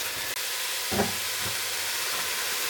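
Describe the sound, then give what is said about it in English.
Loud, steady sizzling and hissing of vegan mince (two packs of This Isn't Beef mince) frying in a hot, steaming pan, with a brief dip and a soft clunk as the mince is added; no talking. “So let's just chuck in the mince, see if that calms down the steam a little bit.”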